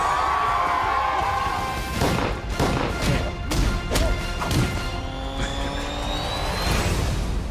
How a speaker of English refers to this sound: They just loved showing us all the punches. They go viral. Yeah, I hope that's not all the punches. Man, that was probably a super cut of all the punches, if I know them, man.